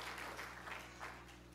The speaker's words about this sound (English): If you believe it, dads, can you clap your hands unto the Lord? Praise God. Oh, praise the Lord.